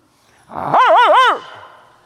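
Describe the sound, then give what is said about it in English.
A person imitates a dog barking with one loud, drawn-out vocal yelp that wavers up and down in pitch for about a second, with no other sound around it. “Bark with me. 1, 2, 3. That was good.”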